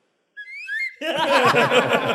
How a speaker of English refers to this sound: I feel like people think I don't know what a slide whistle is from when I was like, what is this? But I've never heard a slide whistle talk like that.